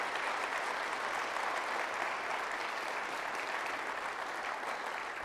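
A church audience applauds steadily, many hands clapping in a dense, continuous wash of sound that holds an even loudness for about five seconds without letting up, applauding the team who put up the tree and decorated the church for Advent and Christmas.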